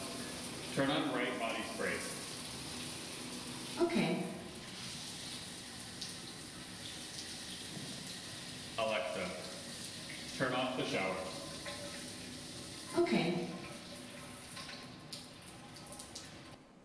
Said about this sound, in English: Set the temperature on shower to 108 degrees. Okay. Alexa, decrease the shower temperature by 8 degrees.